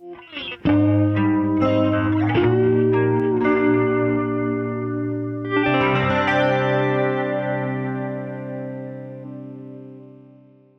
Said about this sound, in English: But this last guitar part that's playing that arpeggio, doing, doing, doing, doing, doing, is, to my ears, it's got a chorus on it. So I honestly can't remember if I put that on there or if Hayden did in the mix.